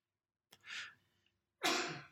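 A single sneeze: a breathy intake builds for a moment, then a sharp, loud burst of air explodes out and trails off. No talking.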